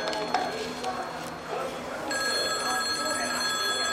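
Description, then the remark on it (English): Muffled voices and clattering handling noises, then a phone starts ringing about halfway through, a loud, steady electronic trill that continues until the end. “Hand me that phone.”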